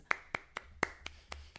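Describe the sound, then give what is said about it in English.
Polite applause from what sounds like a single pair of hands: about seven crisp, evenly spaced claps at a slow, unhurried pace, with no voices. “That's a polite applause for a talent show.”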